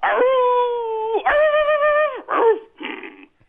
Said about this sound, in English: He's Paul's dog. Paul's dog.